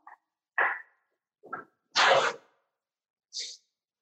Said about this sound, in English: And then we're gonna clean this off quickly with a paper towel.